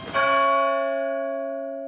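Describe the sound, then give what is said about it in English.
A single deep strike of a very big new bell for the clock tower at Knapford rings out as it is lowered onto a flatbed, its rich tones sustaining and slowly fading with no other sounds around it. “It was a big bell. A very, very big bell. As Carly lowered it onto Percy's flatbed, it rang out.”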